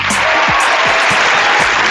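A crowd applauds loudly and steadily, a dense wash of clapping that fills the whole stretch without letting up and with no voices over it, greeting the hosts of a dating show.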